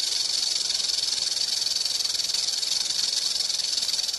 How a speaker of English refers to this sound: Now, rattlesnakes get their name, of course, from the rattle located at the end of their tails, which makes a loud rattling noise when vibrating. I can tell you from experience that when you hear that sound in the wild, you know instantly what it is.